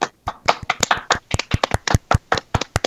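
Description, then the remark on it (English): A quick burst of hand claps to introduce an interview, sharp and fairly loud, coming in a brisk, slightly uneven rhythm for about three seconds, as if one or two people are applauding. No voices. “Let's clap it up for the interview.”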